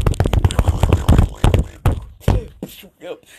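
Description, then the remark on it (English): An improvised drum roll recorded on a shaking phone: a rapid, dense flurry of thumping, knocking hits for nearly two seconds, followed by a handful of separate, spaced-out knocks and brief voice-like sounds. “But hopefully you just heard a drum roll.”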